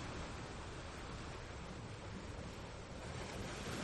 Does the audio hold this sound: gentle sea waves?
yes